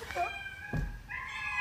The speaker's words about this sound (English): What is that? What is that video? It's a kitten.